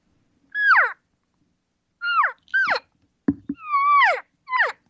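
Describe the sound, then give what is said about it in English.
Five high, nasal elk cow mews, a social cow call, each sliding downward in pitch: one alone, a quick pair after a pause, then a longer drawn-out call and a short final one, with a brief low thump between. “But here's social cow call right here.”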